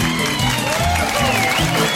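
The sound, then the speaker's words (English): Steady audience applause for a singer at the Golden Nugget, called for on behalf of a band, fills the whole stretch. It is a dense, even patter of clapping at a constant loudness, with a faint voice and some tonal sound underneath. “On behalf of myself, all the …, how about a nice round of applause for …?”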